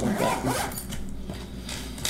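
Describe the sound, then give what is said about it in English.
A zipper is pulled closed around a folded-up Battle Foam foam carrying case for miniatures, a raspy ratcheting drag that runs steadily for a couple of seconds with a few brighter bursts. “And then this guy just folds up and zips.”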